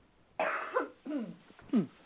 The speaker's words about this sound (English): Hang on just a second. I have a cough, so let me get rid of that, and I'll be right back with you.